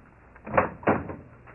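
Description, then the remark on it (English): A front door is opened, with a dull latch clunk followed a moment later by a second, heavier thud as it swings. The sound is muffled, with no voices. “Oh, Daddy, answer the door.”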